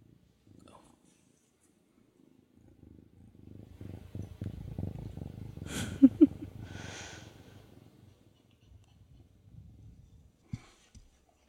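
One of a pair of twin kittens, Ellie and Jolie, is held up to the microphone and purrs right against it, a low, steady rumbling that swells for several seconds, broken midway by a few brief sharp bumps and rustles before fading out.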